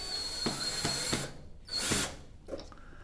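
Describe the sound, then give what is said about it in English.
A power drill drives in the last of the screws, whirring in several short bursts with a longer, louder run near the end, then one brief final buzz. “When I spoke to Leslie Vosshall, I had no idea that she'd be launching me on a mission that would involve power tools.”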